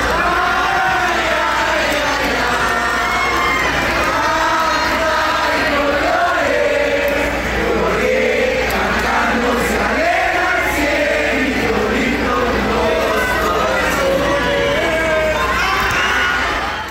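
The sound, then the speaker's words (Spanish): A huge stadium crowd sings the folk song "Cielito Lindo" together during a match, a loud, continuous wall of voices rising and falling with the melody, with scattered shouts mixed in throughout. “Lo único que se escuchó durante todo el partido fue el cielito lindo, y vamos a escucharlo para que vean qué bonito.”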